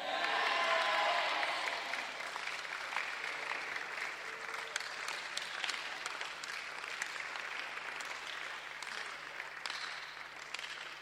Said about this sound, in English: Amen. I don't know why some men are not clapping. No?